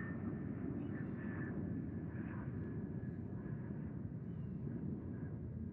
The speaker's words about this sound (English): okay, hold on, this fucking airplane.